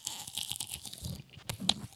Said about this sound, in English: We gotta get that mic up. Everybody chew. Come on, everyone, one time. Yeah, ASMR. One time.